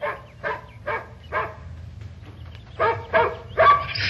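A working dog named Prince, being trained, barks in two bursts of quick barks, three spaced yaps, then a short pause before three louder, sharper barks, over a low background rumble.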